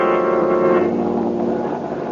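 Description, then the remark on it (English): A steady, droning engine of an airplane flying high over railway tracks in search of a missing train. It hums with a strong harmonic tone that blurs into a rougher, even roar after the first moment. It plays alone at a constant, loud level with no voices. “As we return to our story, Boston Blackie and his friend Mary are in an airplane high over the track from which the train disappeared.”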